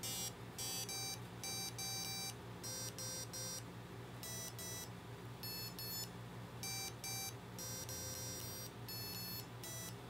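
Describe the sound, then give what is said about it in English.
A small board speaker plays electronic note tones, triggered with capacitive touch pads while tuning, in rapid bursts of short beeps with brief gaps between them, loud, over a steady low buzzing drone caused by two notes accidentally played at the same time. “You can see that I accidentally hit two at the same time, and it tried to play them at the same time, which caused the speaker to make a lower, weird buzz sound.”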